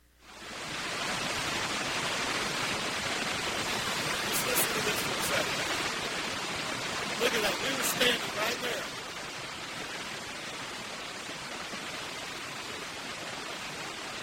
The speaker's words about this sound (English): Can you feel the power in that water rushing over those falls?